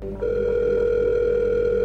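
A telephone ringing tone over a phone line on a 911 call made on July 6, 2009, at 7 a.m. to Carolina 911: after a brief click, a steady, buzzy mid-pitched tone sounds continuously at even loudness until the end, with no voices.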